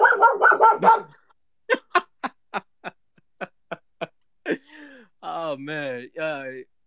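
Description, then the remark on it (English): A pet dog barks: a loud opening burst, then a rapid run of short, sharp yaps, ending with a couple of drawn-out, whining howls. “Sorry, my dog's barking.”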